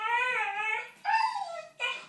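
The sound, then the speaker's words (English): A teething puppy named Fitz whimpers while chewing his tail, three high, drawn-out whines, the first long and wavering, then two shorter cries after brief pauses, with no voices present. “He's chewing his tail.”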